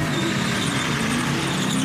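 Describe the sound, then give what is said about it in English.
A Natty Light race car engine roars loudly and steadily with tires squealing, a dense continuous wall of intense mechanical noise throughout, with no one speaking. “While some people print their resumes on paper, we put ours on a race car.”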